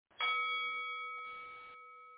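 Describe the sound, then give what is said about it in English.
A single electronic chime, signalling a caller joining the call, sounds once, bright and clear, its tone holding and fading only slightly over the next two seconds. No one speaks. “Okay, we got somebody at the door, so come on in.”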